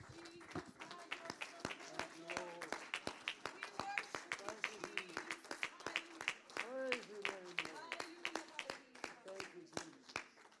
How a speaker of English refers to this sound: Let's all stand together this morning. There you go. Hand clap of praise for Jesus. Amen.